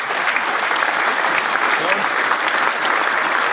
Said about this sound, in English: I ain't even test my sounds out. Let me see if y'all can hear my hand claps. Can y'all hear these hand claps?